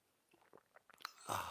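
A few soft clicks and mouth sounds, then a louder airy slurp as someone sips hot coffee from a mug, with no talking.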